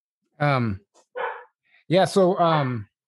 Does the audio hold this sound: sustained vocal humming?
no